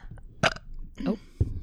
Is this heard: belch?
yes